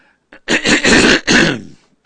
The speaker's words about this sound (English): Sorry to cough in your ear.